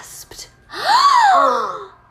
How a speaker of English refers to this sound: He asked. I gasped.